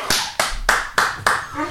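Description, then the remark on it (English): A dog barks five times at a cat in a quick, steady rhythm, sharp and fairly loud, with no talking over it. “Dogs are off. Oh, it's the cat.”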